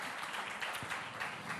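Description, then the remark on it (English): A crowd applauds steadily, many hands clapping at once in a dense, even patter that sounds a little subdued, with no voices standing out. A church audience is applauding its worship team. “Can we give it up for our worship team? We're going to cheer for everybody today.”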